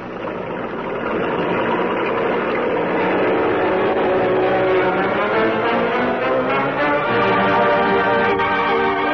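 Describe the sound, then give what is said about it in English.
Engines of a sedan and a truck start up and rev as the vehicles pull away along a road, a steady rising motor drone building over the first second and holding loud, with a faint secondary engine layered underneath. “You get the sedan going. I'll drive this truck. Keep trailing me.”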